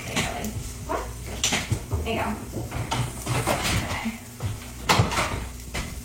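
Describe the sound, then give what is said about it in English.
A door is opened with a series of clunks, rattles and scraping knocks as a dog named Dave is let out into the yard, while the dog moves about and a voice murmurs faintly in the background. “the dog has to go outside so that I can turn around for you guys”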